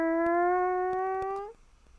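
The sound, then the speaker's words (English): A nuclear power plant warning siren, sounded during an alarm test and heard from a house, gives a single loud, steady wail whose pitch creeps slowly upward, then cuts off abruptly, leaving faint background noise and a few soft clicks. “Yeah, and anytime they were, like, test out the alarms, we could hear it from my house.”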